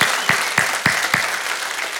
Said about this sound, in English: Y'all with me today? Make some noise. Come on, clap your hands and shout for joy one more time.